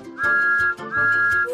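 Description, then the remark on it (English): A whistle blows two long, steady blasts, one right after the other, loud with no talking. “Whistle!”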